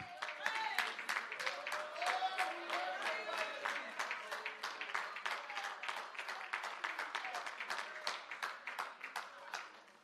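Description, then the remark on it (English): A church audience claps hands to the King of Kings in a morning service, in a steady, rhythmic beat, about three sharp claps per second, sustained throughout, with voices audible underneath the clapping. “Would you put your hands together and clap them to the King of Kings and the Lord of Lords this morning?”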